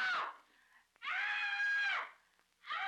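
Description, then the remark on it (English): A woman lets out loud, piercing screams in a horror film scene, one long sustained shriek between shorter bursts at the start and end, separated by brief near-silent gaps, with no talking. “The scene, and she just screams.”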